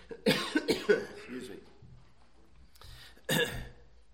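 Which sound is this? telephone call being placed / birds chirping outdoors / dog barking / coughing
coughing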